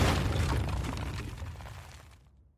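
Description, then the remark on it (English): A heavy explosion booms out outside, its deep rumble mixed with crackling debris before gradually fading away over a couple of seconds. No voices are present. “The explosions continue to rock the outside world.”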